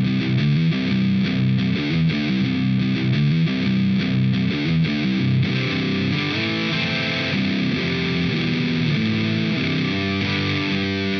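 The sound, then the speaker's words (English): A loud, heavily distorted electric guitar through a Friedman BE100 amp plays choppy rhythmic chords for several seconds, then shifts into ringing, sustained notes, with no voices. “Friedman BE100, …, ….”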